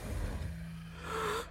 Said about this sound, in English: Gasp!